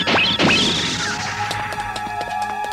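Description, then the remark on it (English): Two quick descending laser zaps fire back to back from the Stiletto mask, blasting open building doors, followed by a loud blasting crash that rings on with metallic tones and scattered clattering debris. “And he shoots open some building doors with his stiletto mask.”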